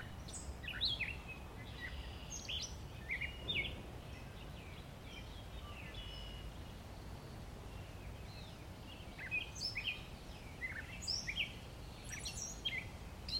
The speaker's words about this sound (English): You've been listening to birds, and trees, and wind, and gravel, and bugs. Oh, and there's a frog. Hey, Froggy.